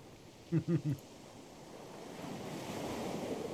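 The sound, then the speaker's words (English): Ocean surf washes steadily onto the shore, its hissing rush swelling louder toward the end, after three quick voice-like murmurs near the start. “Just listen to the waves.”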